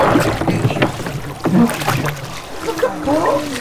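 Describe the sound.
Oars dip and splash through water in uneven strokes as a small boat is rowed toward the shore, with bursts of sloshing; voices call out over the rowing toward the end.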